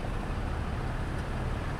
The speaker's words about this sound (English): All these engines around us are just idling away. Yeah. You know, and they're all burning between a quarter and a half gallon per hour. All of these cars around us, we've probably got, 40 cars from that side to this side.